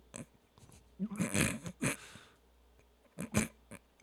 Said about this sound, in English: All right, I'm done burping.